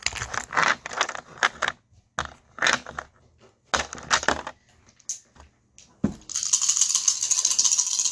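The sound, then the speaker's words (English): Dice rattle in several quick shaken bursts separated by short pauses, then a steadier rolling clatter sweeps through the final couple of seconds as the dice are rolled for a total of 7. No one speaks. “So he rolls 7.”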